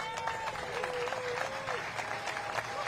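audience applause

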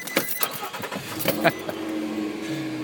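car driving

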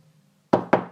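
knocking on a door

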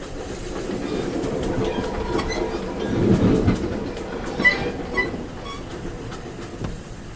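train rolling on rails

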